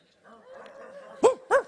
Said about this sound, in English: Man, we got a bulldog over here on this side over here. And now they're all barking.